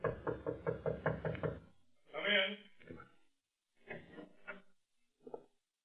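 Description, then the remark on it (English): A quick, steady run of about eight loud knocks on the door of room 302 in a large New York hotel, followed by a few short exchanges of people talking. “Jimmy raises his good arm to knock on the door of room 302”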